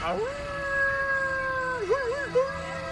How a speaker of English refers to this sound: let out a melodic howl.